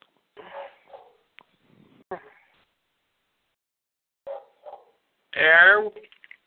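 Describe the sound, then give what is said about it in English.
Stephanie McMahon's dog barks in short, scattered bursts with pauses between, ending in a louder, drawn-out whining bark. “If Stephanie McMahon's dog tells me to hurry up.”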